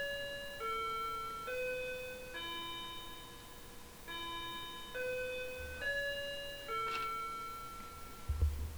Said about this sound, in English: Sorry about the clock. Just take a little second while it does its thing.